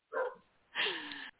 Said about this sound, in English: Trying to get the dog to stop barking without yelling at him.